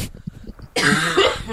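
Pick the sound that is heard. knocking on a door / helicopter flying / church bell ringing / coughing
coughing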